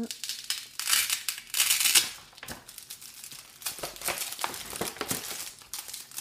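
Sheets of various kinds of paper rustle and crinkle, with bursts of dense crackling handling that rise and fall irregularly, nearly continuous throughout with brief quieter gaps.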